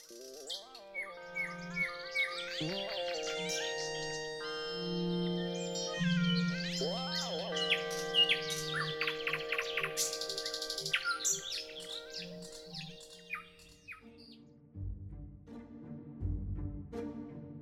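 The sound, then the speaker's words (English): Busy birdsong fills the scene with rapid chirps, trills and tweets layered over one another, continuous, with no voices present. “Perhaps it's harder for us to understand the language of a species so far from us, evolutionarily speaking, like birds or cats.”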